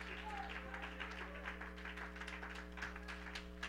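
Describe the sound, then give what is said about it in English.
An audience stands and claps their hands to the Lord in a steady, overlapping patter of hand claps over a constant low electrical hum, with faint voices mixed in underneath. “Somebody stand and clap your hands unto him.”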